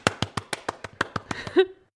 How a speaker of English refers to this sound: Cue the applause.